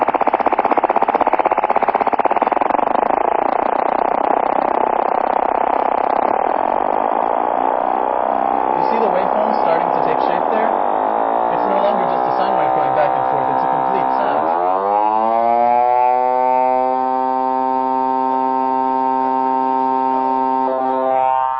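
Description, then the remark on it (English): A continuous FM-synthesized tone whose pitch wobbles in a steady vibrato that gradually speeds up, the smeared buzzy texture resolving into a bright, harmonically rich electronic sound; loud, no talking. “Now we're slowing it down to a very simple oscillation. Now I'm going to speed it up.”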